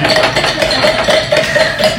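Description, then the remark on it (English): A muddler taps steadily on mint leaves in a glass resting on a table, about seven or eight light knocks in a quick, even rhythm, each with a faint ringing glassy tone. “And you're going to muddle with the glass on the table because you need a solid surface. And it's just going to be tap, tap, tap, tap, tap.”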